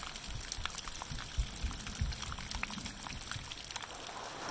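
Light rain patters steadily, with scattered drips and splashes over a soft continuous wash of water, as if falling off a roof edge; no voices are heard.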